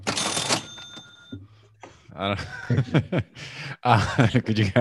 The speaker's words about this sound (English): did you hear the cash register? I'm not wearing the headphones, so I can't hear the sound effects.